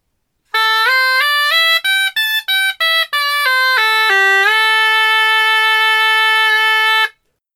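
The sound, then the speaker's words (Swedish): A bright, buzzy synth-like tone plays a five-note pentatonic scale melody, made by removing the second and sixth notes of the seven-note scale: stepping upward, a quick run of short staccato notes, stepping back down, then one long held low note. No voices. “Man tar bort då det vanligaste, man tar bort den andra tonen och den 6:e tonen.”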